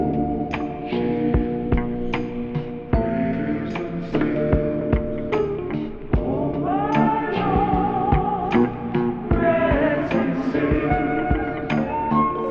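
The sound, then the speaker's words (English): A flute sample with long reverb added, its notes smearing into a sustained, washy tail, with sharp percussive taps cutting through at irregular intervals over roughly twelve seconds. “But let me add the long reverb that makes them sound as interesting as they do in the song.”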